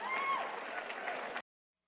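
Steady audience applause at the end of a speech, a dense patter of many hands clapping at a fairly loud, even level, with faint voices mixed in, lasting under a second and a half before cutting off abruptly.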